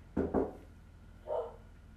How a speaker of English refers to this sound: And the dogs are going to bark.